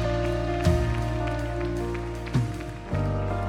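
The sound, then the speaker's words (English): An audience at a Stevens Creek Church worship service claps together in a dense, steady wash of applause that continues throughout, with a sustained keyboard chord humming underneath. “Hey, can we one more time just clap our hands and celebrate that?”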